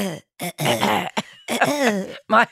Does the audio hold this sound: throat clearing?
yes